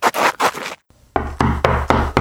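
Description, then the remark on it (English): Loud knocking on a door in a village neighborhood: a couple of scuffling thumps, a brief pause, then a steady run of sharp raps repeating in quick rhythm, with no voices. “is running through his neighborhood like a chicken with his head cut off, knocking on each and every door.”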